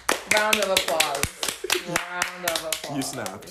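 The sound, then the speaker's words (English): Quick, sharp finger snaps crackle in an uneven rhythm, some rapid and some spaced out, while people talk over them in a studio. “You snapped. You're snapping.”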